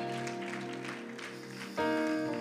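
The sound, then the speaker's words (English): An audience claps their hands unto the Lord in praise, clapping steadily over sustained organ chords, a dense wash of applause mixed with held musical tones that swell louder and brighter near the end. “In Jesus' name, somebody clap your hands one more time unto the Lord and give him some praise.”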